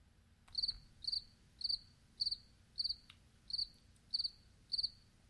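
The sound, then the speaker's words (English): A cricket chirping sound effect, played to mark an awkward silence, with one cricket chirping alone in a steady rhythm, eight short trilled pulses about half a second apart, clear over a faint low background hum. “Maybe we just stare at each other. And play a cricket sound.”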